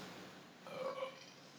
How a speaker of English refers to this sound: And I did a very loud belch off my mic,